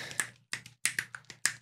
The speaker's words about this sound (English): That's a clapping and snapping.